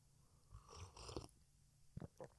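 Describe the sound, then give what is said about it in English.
A quiet slurping sip of coffee, followed by two soft gulping swallows a moment later, with no talking. “As I take a sip of my coffee, because my throat is really scratchy out of nowhere.”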